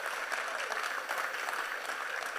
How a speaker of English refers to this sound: And I'm happy that some people are clapping. It's exciting.